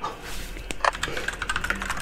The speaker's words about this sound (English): Well, my first one's a nat one. Give me roll a d20 for me, please.